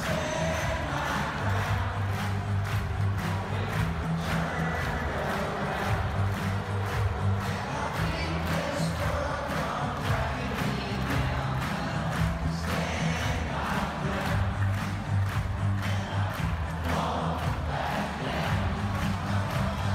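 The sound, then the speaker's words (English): A stadium crowd of about 90,000 football fans stands and shouts a song line together in unison, a loud sustained roar of thousands of voices with a rhythmic chanting pulse running through all twenty seconds. “By the time the song reached its chorus, 90,000 football fans strong stood and shouted at the top of its lungs”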